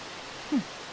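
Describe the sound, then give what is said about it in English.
Faint, steady rushing of a small stream near a field, a soft continuous hiss with no pauses, broken once midway by a brief low sliding tone. “I didn't know there was a stream near this field.”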